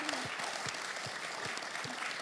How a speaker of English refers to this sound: Can we clap for a minute just for the faithfulness of God? Come on.